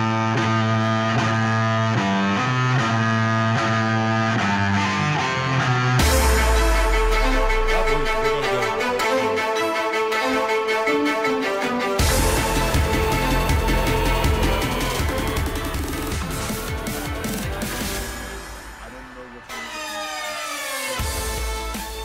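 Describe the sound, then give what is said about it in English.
A loud, driving wrestler's entrance theme with distorted, effects-heavy instrumentation, shifting abruptly between punchy sections every few seconds, played on its own without any voices. “I meant to play Sami Zayn's music, but you know what? This is a very good alternative.”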